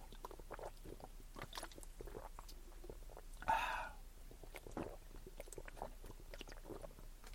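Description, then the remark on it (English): Someone drinking cold water in a series of soft, wet gulps and swallows, with a louder splash-like burst partway through, and mouth noises in between. “I'm drinking down some water.”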